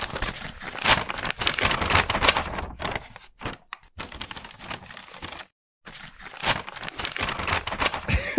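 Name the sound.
paper being crumpled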